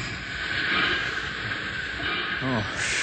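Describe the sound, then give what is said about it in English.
A train braking to a stop as it rounds curves, the drag of the curves slowing it down, heard as a loud, continuous grinding hiss that stays steady throughout, with a brief muffled voice cutting in near the end. “Drag of curves on rest of train, slowing it down. Cable, he's stopping.”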